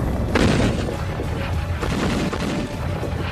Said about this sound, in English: Heavy, heavy, heavy artillery fire. There's no doubt that it was the beginning of an attack.